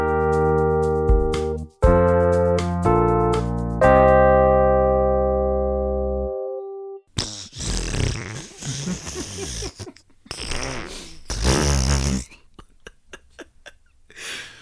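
Sustained electronic chord tones ring for several seconds, then a run of loud, raspy fart sounds follows as a joke, sputtering and buzzing in uneven bursts with no talking.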